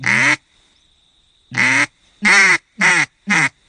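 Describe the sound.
A duck call blows a series of loud, nasal hen-mallard quacks: one long call, a pause, then four quick descending quacks in a steady rhythm, clear with no talking.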